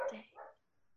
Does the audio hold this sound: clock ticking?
no